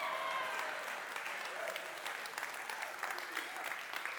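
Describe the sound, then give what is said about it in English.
A church audience claps steadily for several seconds, a dense crackle of many hands at a moderate, even level with no voices rising above it. “Yeah, and for the people that are clapping, it's just letting me know I just got that much more work to do in prayer for you guys.”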